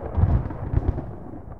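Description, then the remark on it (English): Deep, rumbling thunder from a lightning storm that delays a football game rolls in with a couple of heavy low booms close together, then trails off into a softer, fading rumble with no voices present. “A lightning delay causing anxious moments for head coach James Williams.”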